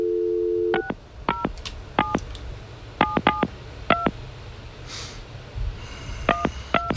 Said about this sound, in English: Oh, I think I misdialed. Anyway, well, let's try it one more time.